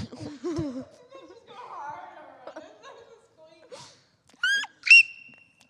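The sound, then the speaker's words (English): Giggly, chortling laughter gives way to a pause, then two loud, sharp, high-pitched squeaks as a voice mimics a smoke detector's chirp, the second one held a little longer. “You sound like those smoke detectors when they chirp.”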